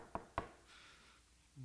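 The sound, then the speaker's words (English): Two sharp, fairly loud knocks on a wooden door, spaced a quarter-second apart, followed by quiet hiss with no voices. “Obed comes to the door, and it's like, it's the king!”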